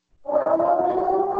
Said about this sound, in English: Oh. That's the corona alarm.